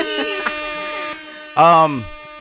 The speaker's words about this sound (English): Let me give myself some motherfucking air horns real quick.